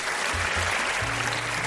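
A crowd applauds a contestant after her answer in a dense, steady wash of clapping that holds at an even loudness throughout, with a faint low hum underneath.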